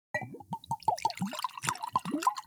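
A drink is poured into a glass, with a quick run of gurgling glugs and splashy plops that rise in pitch as it fills. No one speaks.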